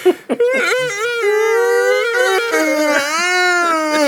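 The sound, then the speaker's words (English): A person lets out an exaggerated, drawn-out vocalized yawn: one loud, sustained moaning tone lasting about four seconds, its pitch wavering and sagging lower toward the end, after a quick intake of breath. “My personal favorite, the people that verbalize their yawns.”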